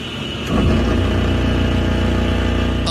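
A car engine whines, rising abruptly in loudness after a brief moment and then holding a steady, humming drone with a thin high tone over the rumble. No one speaks.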